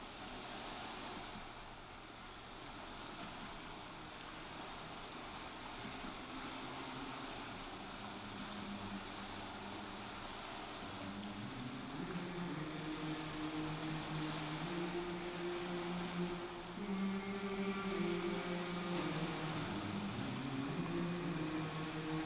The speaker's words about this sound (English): So then you hear the ghostly voices in the ocean.